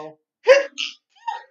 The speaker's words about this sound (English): Okay, I'm good now. Look at my sneeze.